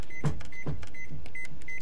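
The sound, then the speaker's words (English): An oven control panel beeps five times in a steady rhythm, each short high-pitched beep paired with a soft click of a button press as the oven temperature is lowered a couple notches to 400 degrees, with no talking. “Let me beep it down a couple notches.”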